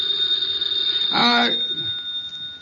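A single short burst of a telephone bell ringing, bright and metallic, rising over a steady high-pitched hiss and fading quickly into quiet background noise.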